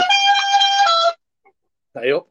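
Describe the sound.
A mobile phone's text message alert sounds once, a bright, buzzy electronic tone held for about a second, followed after a pause by a brief snatch of a voice.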